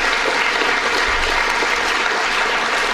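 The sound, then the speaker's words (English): Steady audience applause fills the whole stretch, a dense, even wash of many hands clapping at a consistent loud level with no voices breaking through. “so let's give her a nice round of applause.”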